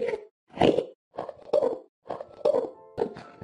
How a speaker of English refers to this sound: Speaking of communication, we also know that they can talk, or at least had the ability to talk. Listen to some of the sound clips from when Endermen are idling near you.